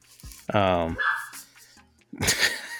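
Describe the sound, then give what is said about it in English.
A dog lets out two loud barks about two seconds apart, the first drawn out and tonal, the second sharper and noisier, with low murmuring in between. “All right, dog. Yeah. He chimes in.”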